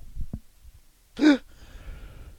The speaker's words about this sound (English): Hiccups, sorry.